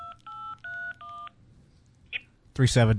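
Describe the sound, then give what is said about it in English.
Four short, steady telephone keypad tones beep in quick succession as a password is typed in, followed by a brief pause, a small click, and then a person starting to talk. “I wonder if somebody can really do that, like listen to tones.”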